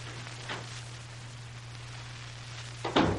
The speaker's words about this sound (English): I'll edge up near the door and open it quietly. All right.